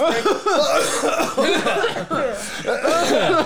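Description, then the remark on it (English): Several people cough together on purpose during a cough break, in overlapping bursts mixed with chuckles and voiced noises, lasting a few seconds with brief dips between rounds. “Cough break. Let's all cough.”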